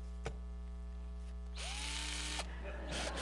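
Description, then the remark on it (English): A power drill whirs, starting with a low steady motor hum, then revving up to a louder, harsher buzzing whine that runs to the end, fairly loud. “Let me drill it out of your eye.”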